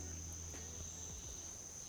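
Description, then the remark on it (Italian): A steady, high-pitched insect drone of crickets and cicadas hangs over a quiet tropical forest night in Costa Rica after sunset, unbroken and fairly faint, with a low background rumble beneath it. “Questa sera si possono sentire i grilli e le cicale turbo, se fate attenzione.”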